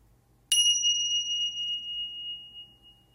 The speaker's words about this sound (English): And at the sound of the bells, we will signify the end of our meditation for today.